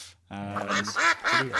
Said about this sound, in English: Now, gentlemen, I can hear the sultry tones of the question duck crying out for us to move on into the question section of the podcast.